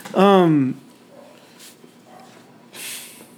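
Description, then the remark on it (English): A dog lets out one loud, drawn-out bark, followed by near silence and a brief soft hiss of noise. “Stop it. Darn dog.”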